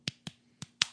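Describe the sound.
Four sharp, crisp claps land in a loose, uneven rhythm, tapping out a makeshift beat in imitation of a song's beat. They come fairly loud over a faint steady hum, with no one talking.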